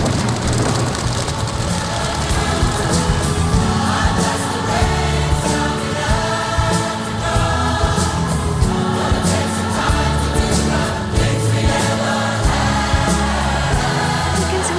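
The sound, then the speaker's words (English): A large group of voices on a stage mimics a rainstorm as a sound effect, layering hissing patter and finger-snap-like drops over deep rumbling booms like thunder. The sound is dense, steady and loud throughout, with no talking. “That's where they make the sound of the rain and the thunder, and they do and all the sound effects.”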